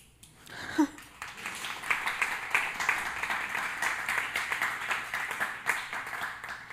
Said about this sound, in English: I have a lot of nervous energy right now. You clapping made me, I don't know what to do with my hands.